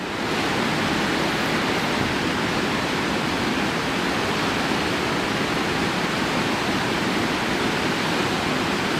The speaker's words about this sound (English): That's the waterfall. Hopefully I can turn it off. Waterfalls are hard to turn off.